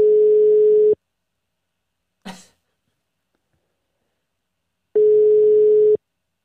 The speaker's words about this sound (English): We're dialing. Is that a dial tone?